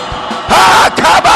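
A crowd of people shouts and screams together in a loud, sustained burst of overlapping voices, answering a call to give a shout and a scream. The sound swells suddenly after a brief quieter moment and continues with short dips.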